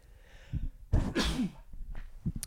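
sneeze

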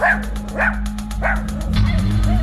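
dogs barking

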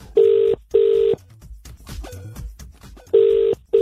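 telephone call ringing out

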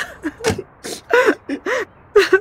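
person crying

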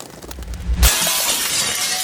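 window glass shattering

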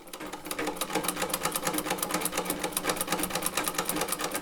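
sewing machine running

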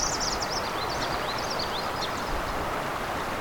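yellow warbler song

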